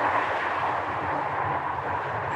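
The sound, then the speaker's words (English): A steady, continuous roar of car traffic fills the whole stretch, a broad rumbling wash with no gaps or distinct passes, like a busy road, and no voices. “Shame about the car traffic.”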